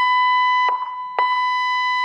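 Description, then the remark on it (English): A loud, steady electronic alert tone from an outdoor warning system with speakers, made by the company Genesis, sounding in a test of the Laguna Beach, California outdoor warning system; a bright buzzing pitch held for about two seconds and broken twice by short dips. No voices. “Richard Danforth is CEO of a company called Genesis that makes a warning system that includes speakers.”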